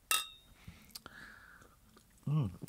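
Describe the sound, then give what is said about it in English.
A glass gives a short ringing clink, followed by quiet close-up sips and mouth sounds, then a brief voiced murmur at the end. “I just picked up my glass to drink.”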